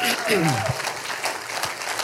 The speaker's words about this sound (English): Can we just give God one more clap? Come on, hallelujah.